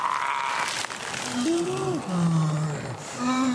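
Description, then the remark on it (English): A werewolf-style monster growl: a loud, low, snarling voice that wavers and slides in pitch through several drawn-out rumbling phrases, with a breathy rasp and no talking. “Okay, so no, that's a werewolf.”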